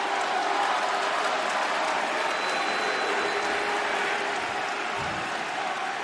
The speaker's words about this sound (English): It's funny I hear boos, but I also hear clapping. That's interesting.